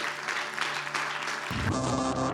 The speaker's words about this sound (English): Well, as we close out, yeah, that's a good place to clap if you want.